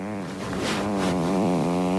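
A long, buzzy fart sound plays for about two seconds, its low pitch wobbling and sputtering steadily without a break, with no talking over it.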